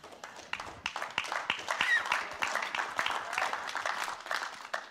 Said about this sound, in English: If it makes sense, you can clap in this church.